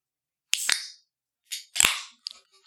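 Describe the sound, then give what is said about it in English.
A drink being opened slowly: a sharp crack with a short hiss of fizz, a pause, then another snapping pop and hiss, followed by a few faint clicks. No one speaks. “That was the slowest open I've ever heard.”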